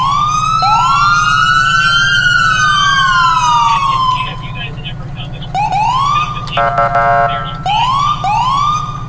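A loud emergency vehicle siren in a video game wails in long rising and falling sweeps, then switches to quicker rising whoops broken by a brief blaring horn-like burst, all over a steady engine rumble.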